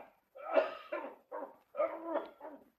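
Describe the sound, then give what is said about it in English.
A man coughs, a faint run of about four rough, throaty bursts in quick succession with short pauses between them, and no talking. “I heard him cough. Did you hear that cough?”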